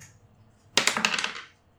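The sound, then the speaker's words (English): A ten-sided die clatters onto a hard tabletop, a sharp first hit followed by a quick run of rattling bounces that settle within about half a second. Fairly loud, no voices. “Okay, so roll me a D on the D10.”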